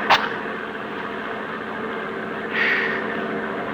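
An armored truck's heavy engine drones steadily from inside the cab as it drives, a constant low rumble with road hiss, a brief click at the start and a slight swell later.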